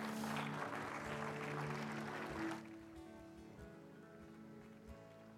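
A church audience claps together as a clap offering to the Lord at the close of a service, in a dense, steady burst of applause that stops abruptly after about two and a half seconds, leaving a quieter, sustained tonal backdrop with a few scattered soft knocks.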